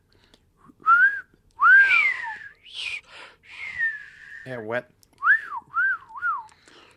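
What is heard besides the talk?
person whistling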